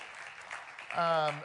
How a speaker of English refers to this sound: And it looks like we are absolutely packed in here, which is fantastic. This is great. Yeah, you can clap for that, sure.